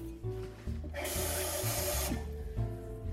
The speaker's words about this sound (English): Next, we're going to grab our saucepan and add enough water so that it reaches about 2 inches in height.